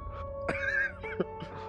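A short horse whinny rises and wavers over about a second, followed by a few quieter snorting bursts, with a faint steady hum underneath and no talking.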